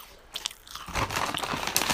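Loud ASMR crunching of crisp food being chewed, a few sharp bites at first, then a dense run of crackly crunches filling the rest, with no talking.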